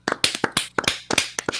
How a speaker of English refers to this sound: And can we just all please have a round of applause? For yeah, you? Yeah.